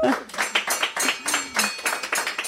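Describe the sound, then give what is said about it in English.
Steady, rhythmic clapping, fairly loud, a round of applause for a person, sounding like a small group or a single pair of hands keeping pace, with a faint voice briefly audible underneath. “Round of applause for”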